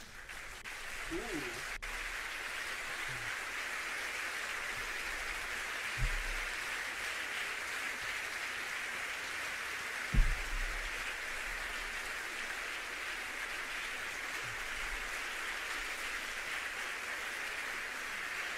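Recorded audience applause rolls on steadily for the whole stretch, a dense, even wash of many hands clapping, with a couple of faint low thumps breaking through.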